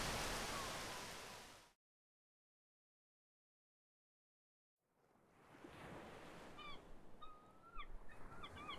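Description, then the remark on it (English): Gulls cry faintly in the distance on the wind by a sea strait in the morning after a storm, a handful of short, thin calls rising over a steady rush of wind and surf, coming after a burst of crashing waves and a brief silence. “The far-off call of gulls on the wind stirs Ochako from her sleep that next morning.”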